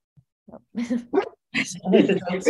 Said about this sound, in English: Which dog is that in the background? Jess, it's always Jess. They're all starting to play behind me.